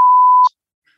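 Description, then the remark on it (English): A single loud, steady high-pitched censor bleep over spoken words, lasting about half a second, cutting off abruptly, followed by near silence with only a faint trace of sound afterward. “I have beef with the way you edit podcasts, …. The way I edit it? Yes. Which particular part? The part where you beep out”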